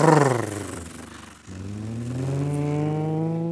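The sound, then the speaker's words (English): A car engine revs loudly, its pitch sliding down, then catching and climbing steadily again as the vehicle accelerates away, with no voices over it. “We're hopping in the car.”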